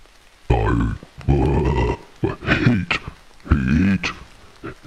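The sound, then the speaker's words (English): A person voices a series of deep, throaty grunts imitating a big white goat, about four or five drawn-out bursts in a row, fairly loud with short pauses between them. “And you can hear this big white goat sitting there.”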